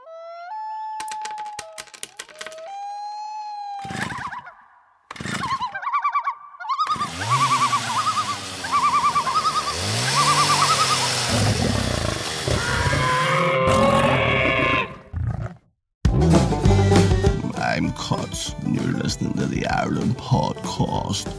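Metallic clinks and jingles of coins dropping in a forest, mixed with bright musical tones and rustling bursts, building into a busy, clattering texture before a brief pause and a final flurry.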